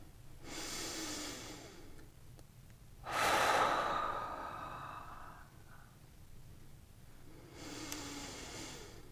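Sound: slow audible breathing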